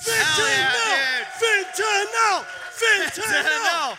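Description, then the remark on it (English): A show audience cheers and whoops after a call for a round of applause for fentanyl, several voices yelling over one another in rising and falling bursts, loud and excited, with little sign of clapping. “Let's get a motherfucking round of applause for fentanyl!”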